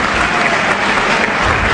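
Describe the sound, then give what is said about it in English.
Loud, sustained applause from a rowdy crowd in Congress, a dense steady wash of clapping with no clear individual claps standing out and no speech over it. “I've never heard such a rowdy crowd in Congress.”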